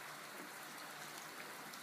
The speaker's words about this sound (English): as I stand outside recording this introduction in the rain. Listen to the sound around me. Listen to what you hear.